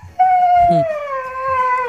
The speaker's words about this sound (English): His front paws are in the empty water bowl, and he just keeps howling. And he does not stop howling until she puts water in the bowl.